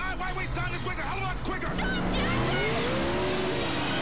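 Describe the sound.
A police car's engine roars and climbs in pitch as it speeds away, with a brief squeal of tires, while people talk over the noise.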